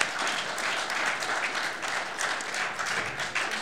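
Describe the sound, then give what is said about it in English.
An audience at a live show applauds steadily, a dense wash of many hands clapping at once that holds at an even, fairly loud level for a few seconds, with no voices above it. “Clap, clap, clap, clap, clap, clap.”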